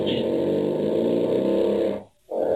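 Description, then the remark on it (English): A loud, long, buzzy fart from a young girl at dinner with her parents in Staffordshire, England, rumbles for about two seconds, breaks off briefly, then starts up again, unbroken by any talking. “As it turns out, it's the sound of a young girl having dinner with her parents in Staffordshire, England, and she's farting.”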